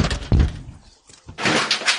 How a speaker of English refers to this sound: Why are they knocking? They're still knocking.